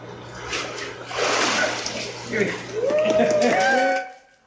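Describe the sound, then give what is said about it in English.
A person is plunged into baptismal water during a baptism, with a loud rush of splashing and sloshing, followed by voices calling out as the water settles. “Now I'm going to baptize you in the name of the Father and the Son and the Holy Spirit for the remission of your sins.”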